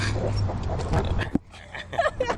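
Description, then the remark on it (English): A dog chews a treat, with a quick run of wet crunching and smacking sounds, a sharp click partway through, and a few soft snuffly noises. “That's Strudel the dog”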